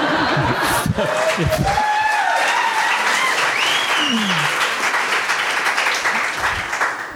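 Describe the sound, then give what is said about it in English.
A crowd bursts into steady, loud applause, dense clapping sustained throughout, with whistles and scattered cheers rising over it. “So I'm supposed to burst into applause after that.”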